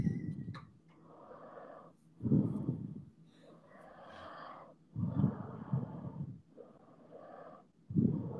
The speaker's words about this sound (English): Are you asleep again, or is this just your breathing? No, I'm good. You need to listen to your breathing,